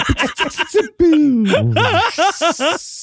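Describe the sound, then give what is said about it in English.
A voice imitates a steam train powering down: rapid breathy chuffs, then a long falling whistle-like tone, followed by slowing puffs over a sustained airy hiss. “Noise of steam train powering down.”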